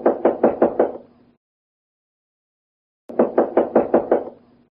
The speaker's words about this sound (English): Just then there was a knock at the door.